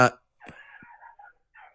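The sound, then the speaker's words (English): A short sharp burst, then wavering high-pitched yelps and whines from stray dogs outside a house that rise and fall for over a second, with a brief pause before another cry; the dogs, which live on a corner, are fighting something in front of the house. “Shit, we got some dogs going fucking crazy outside our house.”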